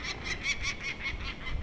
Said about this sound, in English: There's a raven. Ganging up on it.